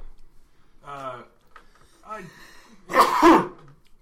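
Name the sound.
sneeze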